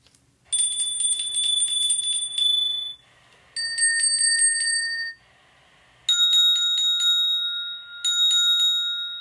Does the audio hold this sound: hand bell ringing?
yes